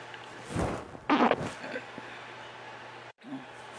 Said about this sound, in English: My silly coughing.